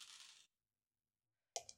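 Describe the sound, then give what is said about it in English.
A handful of seven dice rattle in a brief, hissy shake, then after a pause clatter onto a hard tabletop with a couple of sharp clicks. No one speaks. “You rolled these like you were sprinkling salt on the table.”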